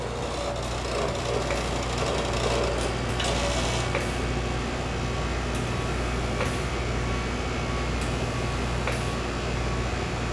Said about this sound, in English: This is a pump. It comes in handy when we're doing stuff where we have to do a